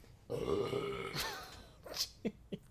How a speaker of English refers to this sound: Oh, that was a big old burp. It's that tap water. It's this tap water. Too much.